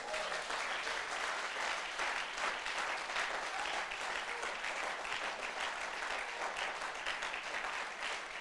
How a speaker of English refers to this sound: Clap those hands for Jesus.